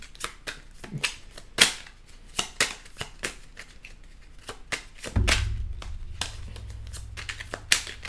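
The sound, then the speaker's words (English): A deck of cards being shuffled to the side of a laptop during a Sagittarius card reading: a run of sharp, irregular papery snaps and flicks, then a softer, steadier riffle over a low hum. No one speaks. “And I'm shuffling to the side here because obviously my laptop is in front of me and the cards are to my left.”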